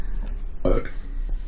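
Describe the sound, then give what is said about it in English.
A single short, throaty burp erupts, fairly loud, with faint background noise before and after. “Okay, right, so I have this thing where if anyone coughs, sneezes, or burps, I say say bless you.”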